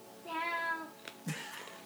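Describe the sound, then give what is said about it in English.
A person's voice imitates a cat with a single drawn-out, wavering meow, fairly loud, followed by a couple of short breathy vocal bursts. “meows in defiance.”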